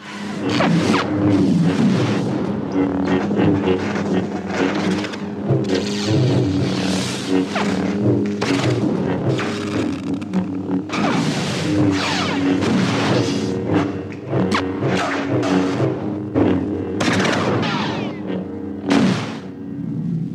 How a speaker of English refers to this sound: we did a lot of strange squeals and echoes. He says each time the sabers disengaged from each other, there was a kind of shrieking as if they were voices, almost like ghosts screaming.